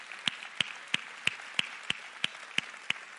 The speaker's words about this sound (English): Would you applaud our team? Let them know of your support.